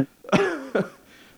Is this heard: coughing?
yes